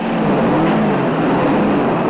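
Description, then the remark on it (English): Two Volvo cars, a 1963 stick-shift model and a 1958 model with over 120,000 miles, accelerate away from other compact cars with a steady, loud, continuous droning engine growl, with no voices over it. “Now watch the two Volvos go.”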